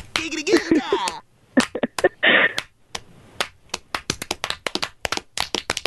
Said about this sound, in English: All the guys in the room. It's ridiculous. Yep. The clapping.